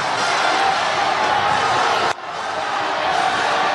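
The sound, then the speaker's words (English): A loud, dense roar of a basketball arena crowd cheering and screaming nonstop as fans storm the court after Nebraska's 80-72 overtime win over Wisconsin, with a brief dip halfway through before the sustained wall of noise surges right back. “Final score in overtime: Nebraska 80, Wisconsin 72, and another court storming. Storm that court.”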